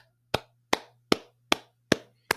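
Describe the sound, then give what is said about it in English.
One person claps six times for a Supreme Court nominee, slow and evenly spaced, each clap sharp with a brief ringing tail, over a faint steady low hum. “That's me clapping for her.”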